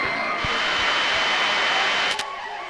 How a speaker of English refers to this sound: Keep going. You've got radio static now. Keep. Just move back to where you were.